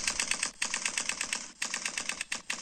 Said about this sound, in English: This sound effect, everybody. That's clearly a machine gun, right? Someone told me that sounds like a typewriter. That is not a typewriter.